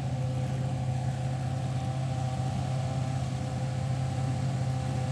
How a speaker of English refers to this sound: Is the sound of the Marlboro-sponsored Ferrari F1 car equipped with a naturally aspirated V8. Joyous, joyous noises. Deafening noises as well, I should say.